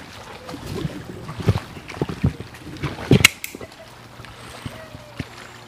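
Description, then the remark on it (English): Fast-flowing river water rushes steadily outdoors at a baptism, with a few sharper splashes and knocks breaking through the constant watery wash over a few seconds. “It's quite fast flowing really.”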